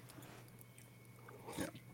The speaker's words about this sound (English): No need to wait for me to sip my coffee, Chaps, but that was very polite of you.